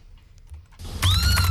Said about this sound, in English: These are sound effects you came out with. So let me just clarify. This is a cat.